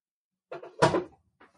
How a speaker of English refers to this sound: Okay, you know what? Let me just open the door for you, kitty.